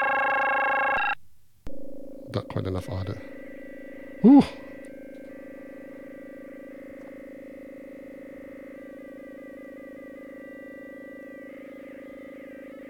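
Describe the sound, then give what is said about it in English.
A buzzy synthesizer tone with dense harmonics gives way to a steady electronic drone with warbling overtones, made by simple high audio rate square wave FM modulating pitch, that holds for several seconds, interrupted briefly by a man's short spoken remarks. “So I could easily replicate that on my 258E FM oscillator, because that's just a very simple, high audio rate, square wave FMing modulating pitch, mm-hmm.”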